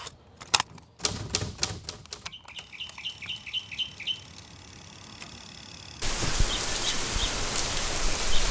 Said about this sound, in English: I am standing in a torrent of rain on May 6th, 2013.